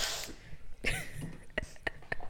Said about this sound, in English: I'm struggling a bit. It was a solid sniff, though.